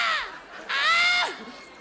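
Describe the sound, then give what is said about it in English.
A voice imitates a squawking bird with two loud, harsh, caw-like cries, the second one longer and drawn out before dropping away. “Even the birds are going, ah!”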